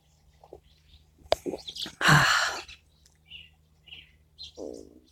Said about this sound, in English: Isn't that wonderful hearing the bird song? I love that it can be mid-October and I'm outside listening to bird song.